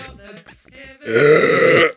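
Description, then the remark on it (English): A loud, drawn-out burp from drinking seltzer rumbles for nearly a second, following a brief stretch of faint voices and clatter at the start. “Oh, it's a burp. That's from Seltzer.”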